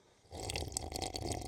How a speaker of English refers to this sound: Oh, we get the slurp this morning. Excuse me while I down buckets of coffee.